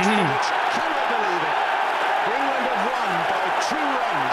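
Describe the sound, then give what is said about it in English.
A large cricket Test match crowd in 2005 roars and cheers as England win, a steady, dense wash of noise throughout, with a few individual voices shouting above the din. “Pay attention to the crowd noise.”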